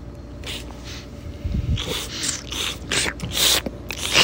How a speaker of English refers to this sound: We're slurping and swallowing. And now we're breathing out through the nose.